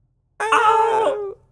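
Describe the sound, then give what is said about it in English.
A voice imitates the Wilhelm scream: one loud, sustained, high-pitched yell lasting about a second, with a brief dip in pitch as it trails off, heard alone with no other sounds. “What's the Wilhelm Scream again?”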